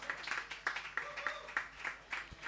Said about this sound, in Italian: facciamole sentire l'applauso vero, dai ragazzi, dai, dai.